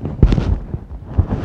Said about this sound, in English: Man, just burst a balloon, didn't I?